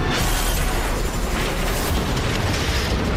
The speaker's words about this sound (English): This is a very realistic car crash.